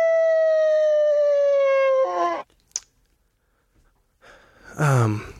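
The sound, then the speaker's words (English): A person howls like a wolf: a long, steady, slowly falling note that wavers and breaks off, a short sharp sound, a pause, then a second shorter, quavering howl, loud. “I think the howl is neutral.”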